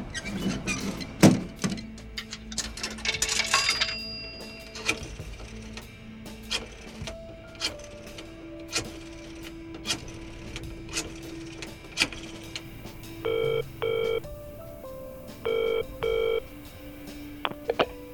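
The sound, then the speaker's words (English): A payphone in a dirty phone booth: mechanical clunks and rattles as the handset and coins are handled, followed by several short bursts of touch-tone dialing beeps. No one speaks. “Soon after he got the order, Sam stepped into a dirty phone booth.”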